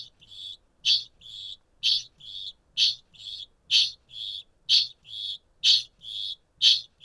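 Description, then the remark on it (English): A male kākāpō named Merv gives a metallic chinging call that repeats in a steady rhythm, about twelve sharp ringing notes over several seconds, each with a faint low undertone, clear with no voices. “So that chinging was being made by a male called Merv.”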